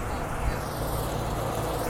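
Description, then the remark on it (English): Double-decker tour buses rumble past in busy street traffic, a steady low engine drone and broad road noise filling the short stretch, unbroken from start to finish. “I'm waiting for traffic to pass, including some emergency vehicles. Double-decker tour buses now.”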